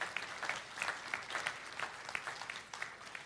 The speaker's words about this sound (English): You can clap for that. That's all right if you want to clap for that, because it's good.